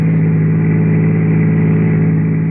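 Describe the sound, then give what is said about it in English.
A car engine drones steadily as the vehicle drives along late in the evening out on the Pacific Palisades, a loud, continuous low hum with a constant pitch and no voices over it. “And so late that evening, I found myself out on the Pacific Palisades with Henry Eichelberger, boy, in the back of the car.”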